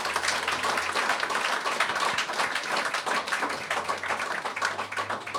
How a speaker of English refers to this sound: and let's give him a clap.